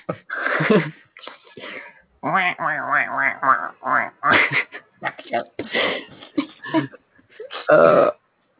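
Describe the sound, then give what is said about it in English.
A voice does a raspy, garbled Donald Duck quacking impression in a loud run of squawky, warbling bursts lasting several seconds, with brief pauses between phrases. “Quick, use your Donald Duck Patronus.”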